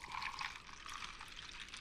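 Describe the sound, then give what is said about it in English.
A steady stream of liquid pouring into a glass or cup, a continuous splashing, bubbling rush for about two seconds with no voices. “Wait, is that all water, or did you pour that in already?”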